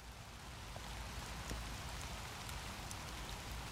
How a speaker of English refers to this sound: A February rain shower, chill and bleak.